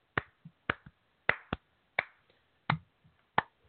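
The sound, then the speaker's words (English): Slow clapping from one person for Sean Spicer, about seven sharp, crisp claps spaced unevenly roughly half a second apart, with no voices underneath. “He gets so many claps. Slow claps.”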